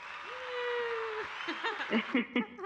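applause sound effect button

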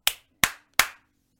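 single hand clap

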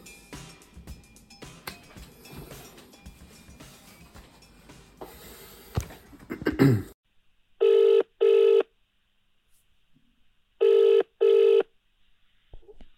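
phone call ringing

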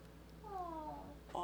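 cat meowing

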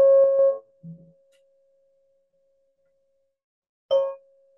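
meditation bell ringing

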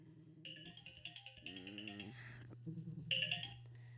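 mobile phone ringing

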